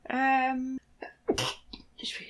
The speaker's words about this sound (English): No, I can feel the sneeze coming.